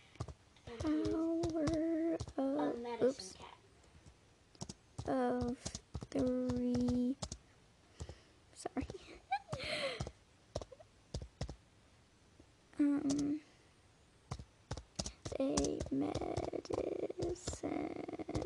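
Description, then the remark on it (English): Rapid, irregular clicks of typing on a computer keyboard, running in bursts throughout while people talk over it. “Sorry, there's a lot of typing.”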